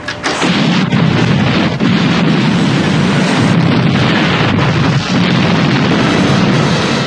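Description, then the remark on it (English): A loud explosion bursts in, then a dense, rumbling roar of blasts and debris continues for several seconds, overpowering, with no voices; an exploding hotel room in a 1983 James Bond movie trailer. “I'd like an exploding hotel room, please.”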